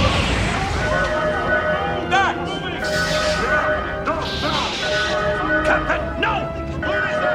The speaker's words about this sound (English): So there's an obviously an explosion that just happened.